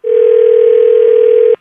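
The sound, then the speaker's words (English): A steady, loud telephone dial tone hums continuously for about a second and a half as a call is placed, then cuts off abruptly, with no voices present. “We're going to have you call him back, kind of push his buttons a little bit, because I'm sure he's very upset right now, all right?”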